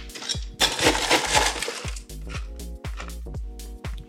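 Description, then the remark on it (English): Ice cubes are scooped and poured into a Boston glass, filling it to the top, starting with a dense rattling cascade, then several sharper clinks and knocks with a bright glassy ring. It is fairly loud, with no talking. “You want to always fill your Boston glass as much as you can to the top.”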